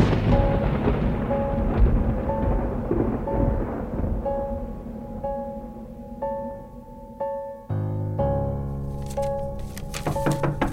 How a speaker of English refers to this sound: That ash storm is almost on top of us.